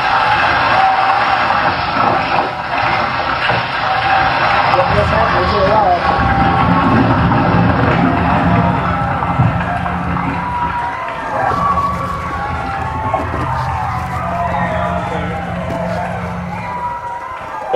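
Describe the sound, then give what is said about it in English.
A large crowd shouts and cheers to the Lord together in a loud, continuous roar, many voices blending into a dense wall of noise that barely wavers for the whole stretch. “Let's hear it. This is the walls. They're shouting to the Lord.”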